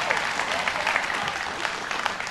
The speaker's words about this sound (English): Come on, give God a good hand clap of praise this morning.